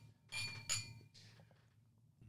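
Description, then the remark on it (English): Two bright glass clinks in quick succession, ringing briefly, as wine glasses of Zinfandel touch in a toast, followed by a softer third tap over a low background hum. “All right, let's cheers, try boys. This. Cheers, mate.”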